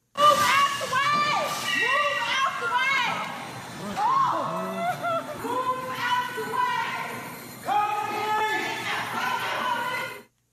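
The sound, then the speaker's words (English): Several people yell and shout frantically over one another, loud, a chaotic continuous stream of alarmed voices with brief pauses, as a woman drives a car into a store; someone working in the store repeatedly yells "Get out of the way!" “There's a video of it where somebody in the store keeps yelling, "Get out of the way!"”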